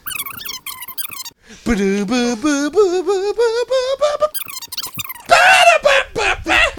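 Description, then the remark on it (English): A voice imitates Bill Clinton playing a saxophone, sliding through a wavering, nasal melody of held notes that climb in pitch, then breaking into a louder, strained squeal near the end. “He takes out his sax, and he's like...”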